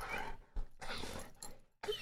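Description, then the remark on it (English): A dog barks to guard the house in a run of four or five rough, noisy bursts separated by brief gaps, fairly quiet, with no one talking. “You scared him away. You protected the house again. Thank you for protecting me, puppy.”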